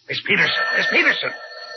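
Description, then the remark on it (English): A telephone rings with a steady, high electronic trill lasting about a second, fairly loud, while a voice murmurs indistinctly over it. “would you please answer the phone?”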